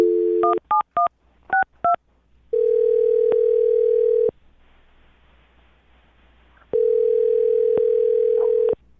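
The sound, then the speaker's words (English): A quick run of touch-tone dialing beeps as a woman's phone number is dialed, then two long steady ringback tones separated by a quiet pause, heard clearly over a phone line with no talking. “All right, well, I'm going to dial her phone number right now and get your second date update, okay?”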